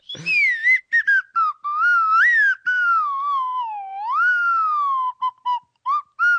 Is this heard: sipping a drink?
no